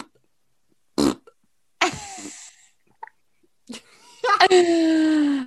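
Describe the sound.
A voice blows a series of spluttering fart noises: a couple of short bursts, a brief pause, then a longer buzzing raspberry that drags downward in pitch. No words are spoken.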